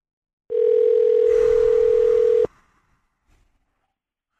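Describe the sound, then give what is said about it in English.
A steady electronic telephone ringback tone sounds loud for about two seconds while calling someone's phone, then cuts off abruptly as voicemail answers, leaving near silence with a few faint clicks. “Pick up.”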